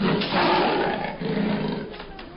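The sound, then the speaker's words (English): A tame pet leopard inside a hostel roars in a rough, throaty rumble that holds strong for over two seconds, dipping briefly in the middle before surging again and trailing off. “It didn't say anything about leopards.”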